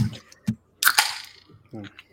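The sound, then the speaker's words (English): Glasses clink softly together in a toast to the May Queen: one bright ringing tap that decays over about half a second, with brief bits of voice before and after it. “I do a soft clink for the audio listeners.”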